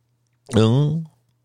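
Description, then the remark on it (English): A single loud, exaggerated gulp made by a voice imitating a nervous swallow: a short, throaty, pitched sound lasting about half a second, with quiet before and after. “You know how motherfuckers swallow when they're nervous?”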